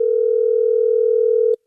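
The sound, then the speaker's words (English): A phone line's ringing tone on a prank call to a bakery, part of Jubal Fresh's radio phone pranks, plays as one steady, loud electronic buzz for about a second and a half, then cuts off abruptly into silence. No voices. “RING! RING! RING!”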